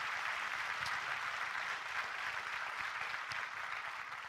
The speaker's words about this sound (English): Come on, let's clap our hands to celebrate that truth today.